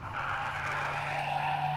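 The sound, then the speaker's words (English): A loud, sustained screech of tires skidding as a bus swerves while the driver spins the steering wheel, with a steady engine rumble underneath; the squeal holds continuously without a break and no one speaks. “Wait, if you two didn't cause the swerving, then who did?”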